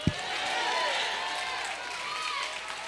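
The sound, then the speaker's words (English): An audience at a Sunday church service answers with one sharp collective clap for God right at the start, followed by a steady wash of crowd noise, scattered applause and cheering that holds fairly loud for the rest of the moment. “If you believe that, you don't have to stand up, but at least give God one clap.”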